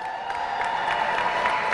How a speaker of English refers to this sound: Let's hear it for Paul Wahlberg, the chef owner of a Wahlburgers, along with his brothers Mark and Donnie. Big round of applause for Woo! Paul, please.